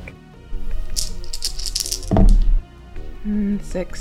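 Dice rattle in a quick burst of bright, clicking clatter, followed by a heavier thunk as they settle, over a low steady background hum.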